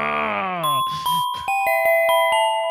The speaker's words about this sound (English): We need like a more aggro chime between segments for like when I'm just so pissed off I want to leave the segment.